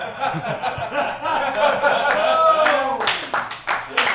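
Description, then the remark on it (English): A slow clap starts with a few sharp, spaced-out claps that come quicker and louder toward the end, building into a quick burst, with chuckling and voices underneath. “Slow clap, gradually gaining momentum, all right?”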